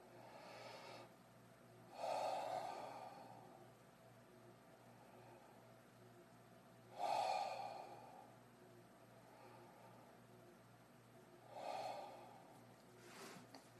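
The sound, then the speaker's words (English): Three deep, heavy breaths taken at the start of a meditation practice, evenly spaced about five seconds apart, each a loud rushing swell that fades out, over a faint steady hum with no talking. “Begin by taking 3 deep, heavy breaths.”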